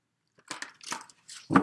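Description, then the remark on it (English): Tarot card decks, including the Tarot of Sexual Magic, being shuffled for a Gemini reading, heard as several short bursts of crisp, papery crackling that rise and fall, with a louder, fuller rustle at the end. No voices. “I'm just going to give them a little bit of a shuffle and take in the energies while I shuffle and go ahead and start your reading.”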